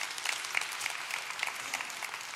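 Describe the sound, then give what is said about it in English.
Steady applause from a crowd, dense overlapping clapping that fills the space evenly without breaks, moderately loud, with no voices standing out. “Give them a big hand.”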